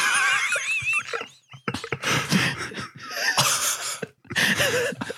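A horse whinnies loudly with a high, quavering call, followed by several rough, breathy snorts and noisy bursts, close up and with no talking.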